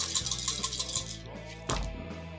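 A handful of six dice rattles and clatters in quick, irregular clicks, followed by a sharper burst as they tumble and settle. No one speaks.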